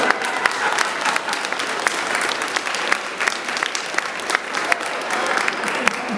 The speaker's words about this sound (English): My friend is called. Just for that, give her a round of applause.